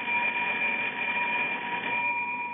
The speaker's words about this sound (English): Right under the button here, it says, ring in case of emergency. But nothing happens. I've been ringing this bell for the last hour. Nothing happens. Nobody's home, I know that, but I don't know what else to do except ring this bell.